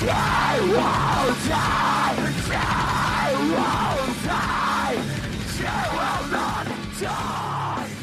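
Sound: screaming vocals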